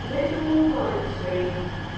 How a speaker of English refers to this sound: Sheffield Railway Station is a highly vibrant nucleus where you can feel a non-stop flux of energy.